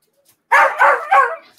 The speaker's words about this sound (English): I hear the dog. So I'm going to mute her because of the dog.